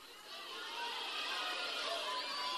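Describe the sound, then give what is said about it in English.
A live audience yells and cheers together, a dense roar of many voices that swells after a brief start and stays loud and sustained throughout, with no single voice standing out. “Well, I can't hear when you're all yelling at me.”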